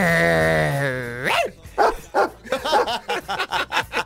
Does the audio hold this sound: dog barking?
yes